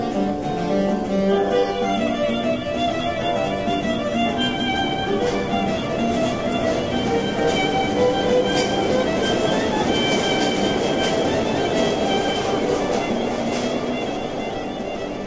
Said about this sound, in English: Anyway, let's take an uptown train.